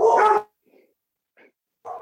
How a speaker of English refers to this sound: Ooh, your dog.